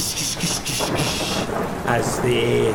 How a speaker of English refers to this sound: Above you, you can hear this big crackling thunder.